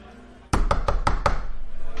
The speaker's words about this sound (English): When all of a sudden, there's a knock on the door. It's a bar, you should just come in.